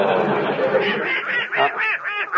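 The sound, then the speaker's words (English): A duck named Herman quacks in a rapid, nasal stream of loud calls, the quacks growing more distinct and choppy toward the end. “Don't call that darn duck my son.”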